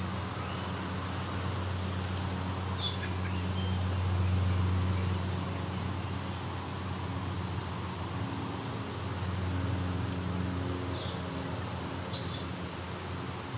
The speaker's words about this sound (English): It's a robin, American robin. Yeah, a couple of robins came in.